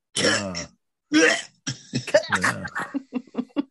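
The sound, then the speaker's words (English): A person imitates the retching sound made right before vomiting, with two loud, harsh gagging heaves, then trails into a series of choppy, broken throaty sounds that grow fainter and more clipped toward the end. “This is the sound you make right before you vomit.”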